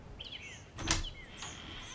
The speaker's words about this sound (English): The nurse opened the door fully.